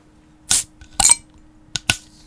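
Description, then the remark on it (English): Four sharp, bright pops with short hissing bursts, coming in two pairs, as bottles of Blue Moon Belgian White beer are cracked open one after another. No one speaks. “Let's crack them up.”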